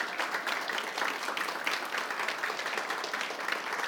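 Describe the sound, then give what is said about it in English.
A standing church crowd applauds the pastor and his wife, many hands clapping in a dense, continuous patter at fairly even loudness, with no single voice rising above it. “Can we just stand and give him a hand and his wife a hand clap of praise?”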